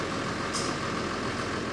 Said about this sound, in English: The tractor waking up?